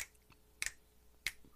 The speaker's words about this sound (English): Can you just snap your fingers like this?